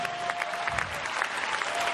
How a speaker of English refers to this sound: We're not here just mindlessly clapping our hands. Come on, in this house, we need to clap our hands right now.